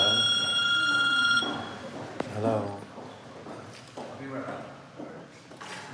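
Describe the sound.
A telephone rings loudly with a bright, steady electronic tone for about a second and a half, then stops as voices begin talking.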